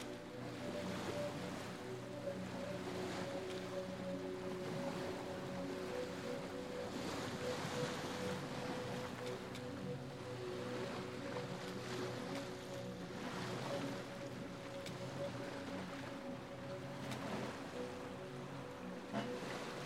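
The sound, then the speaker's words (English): Steady wash of waves lapping and surging in a protective cove where several brightly painted fishing boats are moored, with a faint low motor-like hum running underneath and a breezy hiss throughout; no voices. “A steep stone stairway, carved out of the rocks, descends to a protective cove where several brightly painted fishing boats are moored.”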